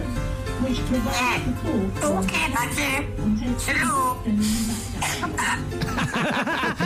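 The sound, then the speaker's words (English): An animal mimics an entire phone conversation ending in a cough: rough hacking bursts mixed in with chattery, voice-like mimicry. It is fairly loud, with the harsh coughs standing out against a busy background. “can also do an entire phone conversation from the ring to the cough once you've had your conversation and you want to hang up.”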